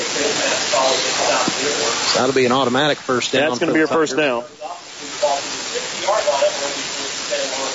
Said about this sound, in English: We're safe in a press box, but a steady rain. I wouldn't call it a downpour, but I would call it a steady rain.